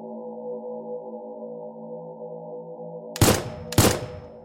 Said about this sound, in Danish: Fire skud blev affyret, og Johan blev dødeligt såret.